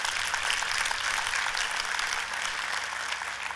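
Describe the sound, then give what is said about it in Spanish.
A church audience claps steadily throughout in applause to God, a dense, continuous wash of many hands applauding together, sustained at an even level without breaks and no one speaking over it. “Un aplauso a Dios por ello.”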